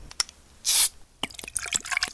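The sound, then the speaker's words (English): Orange soda from cans being poured into a big cup: a brief fizzy rush of liquid, then a quick run of small drips, splashes and bubbly gurgles. No one speaks. “If he walked fast enough, he could get all the cans of orange soda, pour them into a big cup, and drink it all before the soda got too warm.”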